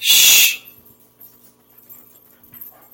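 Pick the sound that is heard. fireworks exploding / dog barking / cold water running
dog barking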